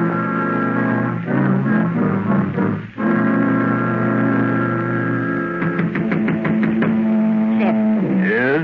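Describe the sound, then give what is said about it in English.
A series of sharp knocks on a door, several quick raps in a row, made by a stranger who has lost his way in the fog, heard over loud sustained organ-like music that plays throughout. “Someone's at the door.”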